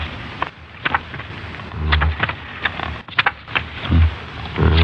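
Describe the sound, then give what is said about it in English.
An IBM punch card sorting machine runs with a steady mechanical whir and rapid, irregular clattering clicks, broken by several heavier low thumps, with no voices over it. “I can't, but this IBM machine can.”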